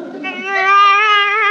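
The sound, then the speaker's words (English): A single drawn-out wailing cry, fairly loud, rising slightly and holding steady for over a second, a baby crying on its own inside a car, with no talk. “A baby! Hey, what are you doing in my car?”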